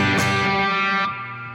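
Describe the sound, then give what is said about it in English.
A loud, sustained distorted electric guitar chord, played through an amp while its speaker breakup knob is being tried out, rings out with gritty, fuzzy overtones, its bright top end cutting off abruptly partway while the crunchy body keeps droning. “Let's see what the speaker breakup knob does.”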